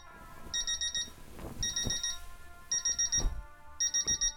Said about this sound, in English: I'm lost in thought for some time and only shaken out of it by the sound of the alarm clock.